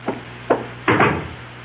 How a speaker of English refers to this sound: Someone's at my door. Hold on. Just a moment.